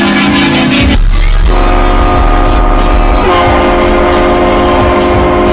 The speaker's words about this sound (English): These train horns for vehicles.